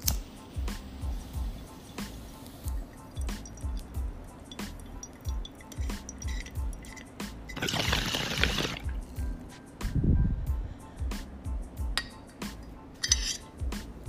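A steady burst of bubbling water rattles for about a second as someone takes a hit of Jack Herer cannabis from a bong, followed by a low, breathy exhale amid faint clinks and background rustling.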